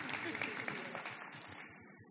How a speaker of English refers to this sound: We can clap.